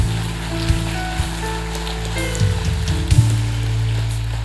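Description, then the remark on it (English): A dense wash of audience applause, many hands clapping into a steady crackling roar that holds at an even loudness for several seconds, with a low sustained hum beneath it. “Come on, let's clap one more time.”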